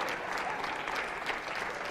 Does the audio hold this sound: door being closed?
no